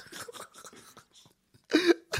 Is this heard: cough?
yes